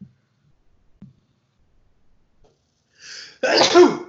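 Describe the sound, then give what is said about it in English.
A single loud sneeze bursts out near the end, preceded by a sharp breathy inhale, after a few seconds of near silence with faint small clicks. “Bless you.”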